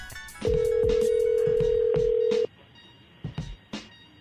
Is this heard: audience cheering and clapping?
no